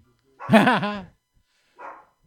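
A dog barks, one loud, drawn-out bark followed after a short pause by a softer, shorter one, with quiet in between and no other sounds.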